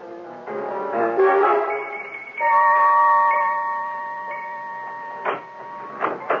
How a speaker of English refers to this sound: Eh bien, chérie, wait here till I turn off the alarm.